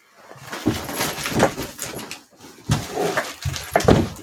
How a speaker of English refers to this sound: Stop slamming my door, you. The pixies downstairs don't like it.